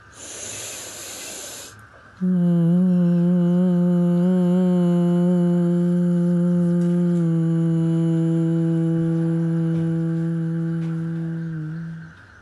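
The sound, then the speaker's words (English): A breathy two-second inhale, then a long, steady, low-pitched hum held on one note for about ten seconds, loud and even before easing off slightly at the end. It is the humming exhalation of Bhramari pranayama, a breathing exercise. “Inhale and exhale out with a humming sound.”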